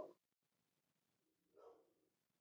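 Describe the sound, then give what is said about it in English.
Two muffled, faint barks from a dog, one at the start and another a moment later, with no one speaking. “Stuart, was that your dog?”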